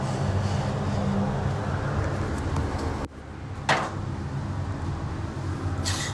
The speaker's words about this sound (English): The trolley bus cables hitting the van. Special sound effects.